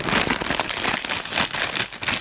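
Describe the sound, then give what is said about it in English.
A bag of spicy cheese crunchies is crinkled and torn open, giving a steady run of loud, bright plastic rustling and crackling with a few sharper crunches, and no voices. “First off, does it smell like fart when I open it?”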